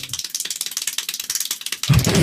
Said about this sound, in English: An Iowa man clapped 1,140 times in 1 minute. What? Breaking the Guinness World Record.